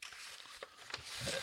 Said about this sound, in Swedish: Förlåt, jag sa att du bläddrar i manuskriptet.